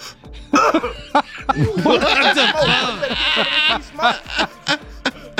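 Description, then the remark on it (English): A smoking goat bleats several times, loud wavering calls running almost continuously for a few seconds, followed by a few short bursts of sound. “I also have a goat smoking.”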